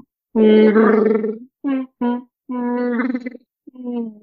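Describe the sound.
A person imitates the Wookiee roar: a long, loud, harmonic growling wail, then three shorter yowls in quick succession, with no other sounds.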